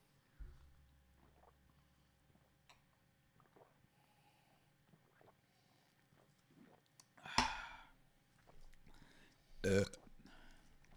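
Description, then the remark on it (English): A low, rumbling burp comes first, followed later by two short, louder burps, otherwise quiet. “I need to burp at a different register.”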